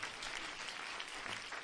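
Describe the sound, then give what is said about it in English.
An audience claps together as a hand clap of praise to the Lord, in a dense, sustained burst of applause, many hands overlapping into a steady crackling wash with no voices rising above it. “Let's put our hands together and give the Lord a hand clap of praise one more time.”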